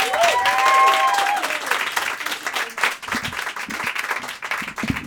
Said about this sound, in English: Are you ready to applaud, yeah.